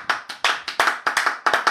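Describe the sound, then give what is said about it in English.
Brief burst of hand clapping: about a dozen sharp claps in a quick, slightly uneven rhythm, like a small round of applause, with no voices. “Round of applause for male tears.”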